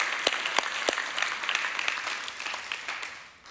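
An audience claps their hands for Jesus in a steady wash of applause, many overlapping claps with a few sharp, louder ones standing out early, then gradually tapering off toward the end.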